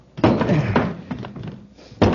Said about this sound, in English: He's locked the door. Hundley, have you got a key to this door? Sorry, Commander. Jura has the only one. Search him. I'll see if I can smash the door.